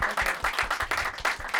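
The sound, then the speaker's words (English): An audience breaks into a round of applause, the clapping dense and fairly loud with a steady, pulsing rhythm, and no voices rising above it. “Ladies and gentlemen, a round of applause, please”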